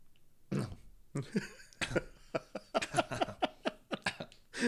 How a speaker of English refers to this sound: Nobody believes you're coughing. No, it's just, no. Stop! People are gonna think you have COVID.